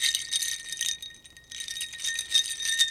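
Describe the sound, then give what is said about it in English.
A strand of beads, believed to be Mardi Gras beads, is shaken as a sound-effects prop to mimic ice clinking in a water glass, more like crushed ice than cubes: bright, tinkly rattling in two bursts separated by a short pause, with faint ringing tones underneath and no talking. “This is ice in a water glass, and this is what it sounds like.”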